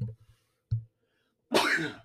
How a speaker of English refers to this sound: Hold on. I gotta sneeze.